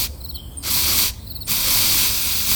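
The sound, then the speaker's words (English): Two hissing bursts of fine, cool mist spraying pheromones from two small nozzles on a car dashboard, the second longer and steady. High chirping tones are briefly audible in the short gaps. “It is also necessary to spray you with the correct and pheromones.”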